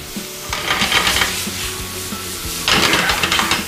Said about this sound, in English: Nothing hard yet. We haven't done anything hard. We just stir frying, sauteing.